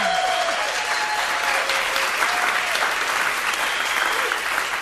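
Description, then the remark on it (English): An audience claps steadily for about five seconds, a loud, dense wash of applause with a few high whoops and cheers rising above it, welcoming a guest on International Women's Day. No one speaks. “And as we can plainly hear, you know, you have your own cheering audience here and people who appreciate your work.”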